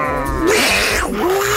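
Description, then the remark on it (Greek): A person imitates a cat's yowling caterwaul, a rising and falling wail drawn out over a couple of seconds, loud, with a second voice briefly joining in at the start. “Παιδιά, εγώ προχθές άκουγα δύο γάτες και κάναν το συγκεκριμένο ήχο που ακούμε συνήθως το καλοκαίρι.”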